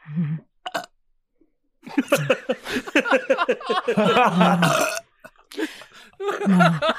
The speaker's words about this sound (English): I can't burp like that at all. Those are the most relaxing sounds ever.